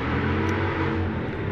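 A loud motorcycle with throaty pipes rumbles past, a steady low engine roar filling the whole stretch with no talking over it.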